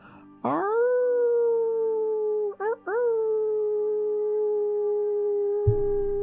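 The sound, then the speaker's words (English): A loud, wolf-like howl: one long sustained cry that slides gently downward, breaks briefly, then rises again into a second drawn-out note before cutting off. “Let us all howl together. Howl out loud, howl within your mind, howl within your heart, and let your howl be heard.”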